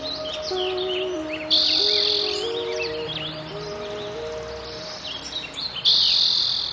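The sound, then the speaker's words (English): Birds sing and chirp steadily over a continuous bed of buzzing insects in a California park of buckeye and oak woods with a stream, bright trilling bursts rising every few seconds and a low tonal hum underneath, no voices present. “woods, California buckeyes and oaks, as well as insects and frogs and toads and birds, hawks and ducks, woodpeckers and hummingbirds, robins and swallows and jays and warblers and wrens and finches.”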